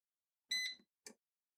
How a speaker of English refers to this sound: And we have noise. So that means the air fryer chicken's gone on.